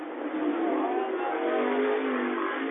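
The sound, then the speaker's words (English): A steady, loud roar of three or four sprint cars racing on a racetrack, their engines revving together, the droning whine sustained without a break as they lap at speed. “They're on the racetrack. The sprint cars are right now. Tell me if you can hear it.”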